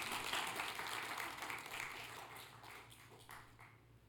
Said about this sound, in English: How many can give him applause right now?